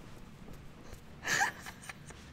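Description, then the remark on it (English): A single short, forced cough bursts out midway, fairly loud, with a breathy edge. Quiet room tone surrounds it and no one speaks. “Oh, and that was a fake cough.”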